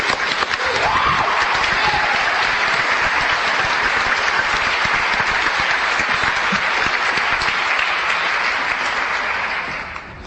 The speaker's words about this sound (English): I was very pleased to be seated in the audience to hear that speech. It was wonderful. I'd like to have us give him a round of applause again.